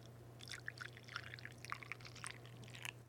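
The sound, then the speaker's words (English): Coffee pours into a cup in a steady trickle with small splashy bursts, alone over a low constant hum, lasting a few seconds. “My first impression when I was pouring it is it looked pretty thick and dark.”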